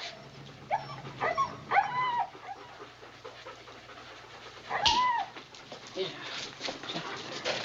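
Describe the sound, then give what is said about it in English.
Eleven dogs whine and yelp in short, high-pitched bursts, a cluster early on and another sharp cry midway, over a steady murmur of background noise. “leaving Barney with all the dogs. Now, where will 11 dogs be happy?”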